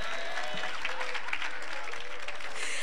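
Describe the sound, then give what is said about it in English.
An audience at a church service clapping hands for God in a steady wash of applause, many overlapping claps forming a dense, fairly quiet roar with no speech on top. “Let's clap hands for God.”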